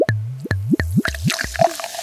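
A drink being poured from a bottle into a glass, with five rhythmic glugs that give way to a softer splashing trickle at the end. No one speaks.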